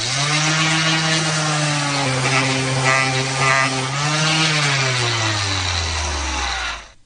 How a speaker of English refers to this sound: And an electric sander.